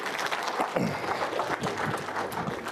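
A round of applause from a group, steady dense clapping throughout with a few voices faintly mixed in, moderately loud and sustained.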